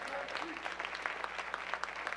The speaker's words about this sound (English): Oh, the hand claps are thin and now.